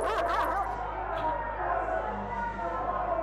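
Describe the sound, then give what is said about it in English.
Several dogs bark and yip excitedly in a busy, continuous burst, with a low rumble and murmur of people underneath, as a posse of people with dogs chases a person down. “he and his posse chased me down with dogs.”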